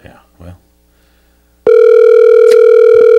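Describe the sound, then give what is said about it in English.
A voice murmurs briefly, then after a pause a loud, steady outgoing cell phone call ringing tone kicks in and holds continuously to the end, electronic. “Sometimes like the person doesn't see the call. And then the second time, it's like, oh, my phone's ringing.”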